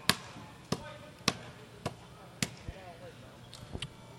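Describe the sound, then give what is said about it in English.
A basketball slaps hard against the floor right below the broadcasters' microphones during a substitution timeout in a game, about eight sharp, loud bounces at uneven intervals, with faint voices and arena murmur in the background. “I meant the ball slapping right below us.”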